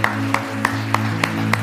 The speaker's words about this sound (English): Come on, church, let's clap all over this place.